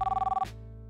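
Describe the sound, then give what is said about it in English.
A store telephone rings with a rapid, pulsing electronic trill for about half a second, then the ringing cuts off abruptly, leaving a low hum. Fairly loud, with no voices. “Before I could tell them about the birds, the store phone started ringing again.”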